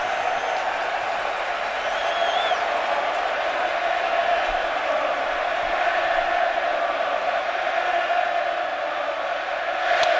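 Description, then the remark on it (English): A loud, standing-room-only crowd at a baseball stadium roars steadily throughout. It is a dense wash of voices, with scattered shouts and whistles rising over a constant din, as the crowd jeers pitcher Johnny Cueto. “Well, this standing room only crowd trying to get under Johnny Cueto's skin, and they might be.”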